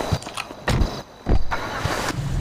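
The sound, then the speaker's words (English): A car engine cranks in a few rough bursts, then catches into a steady, fairly loud rumble, with no one talking. “It's weird because as soon as I get in and start the engine, like 20 fuel disappears.”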